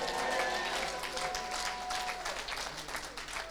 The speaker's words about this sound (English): If you believe, shout, clap your hands.